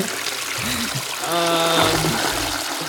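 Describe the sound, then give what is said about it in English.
A toilet flushes with steady rushing water, and a gurgling, bubbling swirl rises in the middle before the flow settles again. Fairly loud, with no one speaking. “I'm going to wait for that bubbling to stop”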